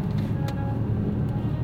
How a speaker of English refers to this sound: Heading back into the city now. Traffic's backed up over the Mississippi Bridge.